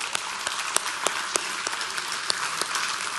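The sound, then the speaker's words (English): A church audience breaks into steady applause, a dense wash of many hands clapping with a few sharper individual claps standing out, moderately loud and continuous throughout. “All the old people are like, am I supposed to clap?”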